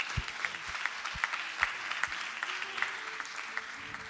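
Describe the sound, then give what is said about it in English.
A church audience applauds steadily for about four seconds, the dense clapping carrying a regular rhythmic pulse of sharp accents roughly every half second, with low thumps underneath and no one speaking. “Can we give God a clap?”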